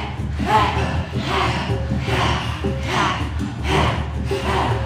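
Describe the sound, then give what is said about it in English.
Forceful, rhythmic breaths are pushed out as a breathing exercise in a steady series of about six sharp, loud, short and quick huffs, over a low continuous hum. “Just breathing, but it's not just breathing, it's more than just breathing.”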